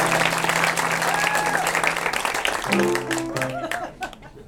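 A theater audience breaks into a sustained, dense round of applause, loud and continuous, with a few sustained musical notes sounding beneath it before the clapping thins out at the end.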